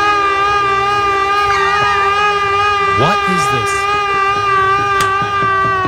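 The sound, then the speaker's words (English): The new Islanders hockey arena goal siren blares continuously, a loud, steady, deep horn tone with rich overtones that holds for the whole stretch while a man briefly speaks over it. “That is the new Islanders goal siren.”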